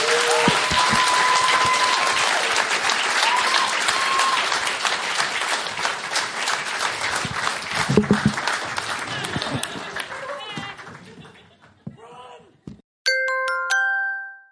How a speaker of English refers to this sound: And please give our guests a round of applause.